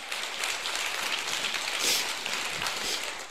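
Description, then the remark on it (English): A crowd of people clapping their hands together as a hand clap of praise to the Lord, a dense, steady wash of applause that holds at a moderate level for a few seconds, with no voices over it. “That's to every believer, and if you're happy for that, give the Lord a great hand clap of praise.”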